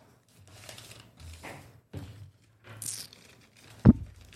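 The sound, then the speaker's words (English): A plain, ordinary sheet of paper is torn and crumpled against a timer into a paper rocket ship, in several short, irregular bursts of crisp rustling, ending with a sharper, louder crunch near the end. No one speaks. “Okay, from a plain, ordinary sheet of paper, I've created this.”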